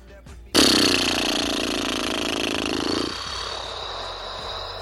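A RAV4 car engine suddenly starts up loud and rough with a buzzing, rattling putter as it putters across a finish line, then drops to a steadier, lower drone for the final couple of seconds. No one speaks.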